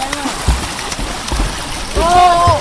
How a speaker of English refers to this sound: Children play in the Nagada River just outside Maiduguri in northeast Nigeria.